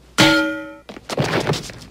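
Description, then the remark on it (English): A frying pan hits a clown's head with one loud metallic clang, its bright ringing tone fading over about half a second, followed by a flurry of rough, noisy bursts. “Okay, look up, look down, now look at Mr. Frying Pan.”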